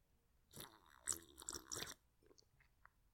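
A loud small sip of whiskey: a noisy slurping burst that swells and breaks into a few wet pulses over about a second and a half, then fades into faint small sounds.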